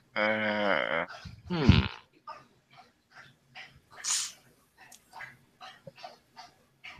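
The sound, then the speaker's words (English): A dog laps water from his bowl in a steady run of quick, wet slurps. A short tonal whine and a sharp snort-like burst come just before. “That is my mom's dog that I'm watching drinking out of his bowl.”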